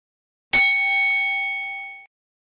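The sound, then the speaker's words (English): A single bright bell ding with a sharp strike, played as a sound effect each time Commanders owner Josh Harris says Washington instead of Commanders, ringing out clearly and fading over about a second and a half, heard on its own with no talking. “All right, that is the bell. That is the obscenely expensive bell slash ding that we use on this podcast only for instances like this one.”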